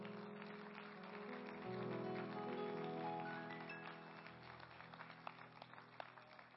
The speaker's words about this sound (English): And everybody claps their hands unto the Lord.